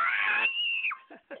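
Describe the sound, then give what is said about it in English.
Children getting ready for bed scream goodbye over the phone: a loud, high-pitched scream that stretches out for most of a second, then trails off into a couple of shorter yelps, sounding slightly compressed over the phone line. “And my kids are getting ready to go to bed, and they want to scream bye to you guys.”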